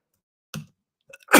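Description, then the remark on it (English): A single loud sneeze: a brief voiced intake, a short pause, then a sharp, hissy burst of air that cuts off abruptly. “Bless you.”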